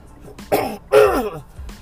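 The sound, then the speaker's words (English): Two harsh, loud coughs into the microphone in quick succession, the second longer and heavier than the first, with no talking around them. “I know I suck with this whole podcasting, coughing up your ear.”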